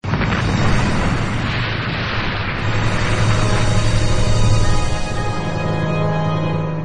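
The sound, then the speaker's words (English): A huge atomic explosion, ignited by a lightning strike, roars loud about 20 feet away. Its deep rumbling blast is sustained for several seconds with a crackling, churning texture before slowly easing, with no voices present. “Just then, lightning strikes the mad doctor and his monster, igniting a huge atomic explosion that everyone watches while standing 20 feet away.”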